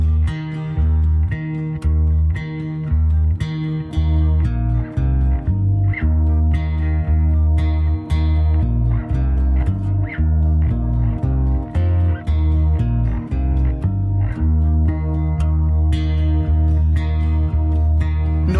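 A loud, full-band song plays with a steady rhythm, sustained harmonic tones and sharp recurring accents, with bright yipping, animal-like sounds woven into the music.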